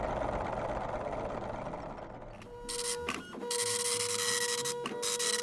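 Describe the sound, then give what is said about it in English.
A printer at a station prints out the first quiz question, starting with a low mechanical hum, then loud bursts of whirring and buzzing with steady tonal whines, pausing briefly before printing continues. No one speaks. “Carl, the station manager's getting ready to print us off our first question”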